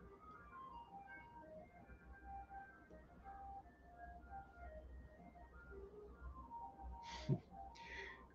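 An ice cream truck making its rounds in a neighborhood plays a repeating tinny jingle melody, faint and steady over low background rumble, with a couple of short breathy hisses near the end.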